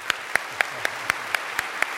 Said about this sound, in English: So would you guys give their parents a round of applause,